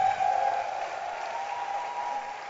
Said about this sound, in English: You see, from the way some of you are clapping, it's as if you don't believe that we can have a speaker from Mozambique.